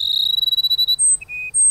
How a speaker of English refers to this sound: Carson sparrows have waited for the late summer rains to begin their courtship. Now the males sing their plaintive phrases almost nonstop.